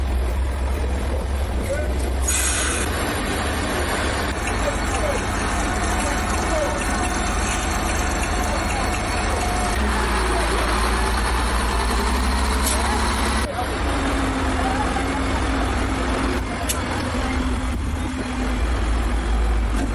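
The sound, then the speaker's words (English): Heavy truck engines of a convoy rumble loudly and continuously on a very muddy, difficult stretch of road in Liberia, helped by a bulldozer, a deep steady drone with occasional shifts in pitch as the vehicles labor along, faint indistinct voices mixed in. “The team encountered challenging terrain and road conditions, but the convoy persevered with the help of a bulldozer to navigate through a very muddy and difficult stretch of road.”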